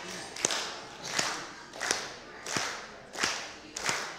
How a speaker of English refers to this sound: If you hear my voice, clap two times. If you hear my voice, clap seven times.